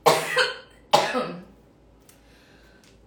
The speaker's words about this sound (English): And I'm going to cough again for sure.